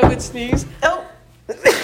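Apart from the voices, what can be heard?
sneeze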